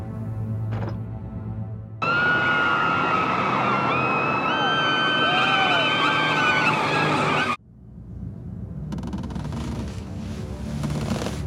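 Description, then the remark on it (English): Two cars racing on a road in one of the first sequences of a David Lynch film roar past with loud engines and squealing, skidding tires in a dense burst lasting several seconds, then it cuts abruptly to a quieter rumble of road noise. “One of the first sequences of the film, the accident happening, intercutting between the car being pulled over to the side of the road that Rita's in, and then the two cars that are racing.”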